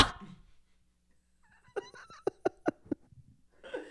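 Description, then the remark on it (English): A quick run of six or seven short, sharp dog barks, moderately loud, with quieter muffled sounds before and after. “Cute dogs.”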